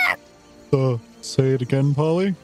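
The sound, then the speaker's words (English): A human voice imitates a parrot squawking down from the trees above: four loud, strained cries with wavering pitch, the first short and the rest coming in quick succession. “Holly in the trees above you kind of squawks down at you”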